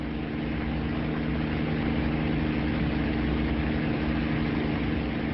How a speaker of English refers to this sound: What is this thing, Doctor? It's a helicopter, Jamie. Huh? A chopper. You know, a whirlybird. He says it's a bird. No. It's a primitive form of flying machine.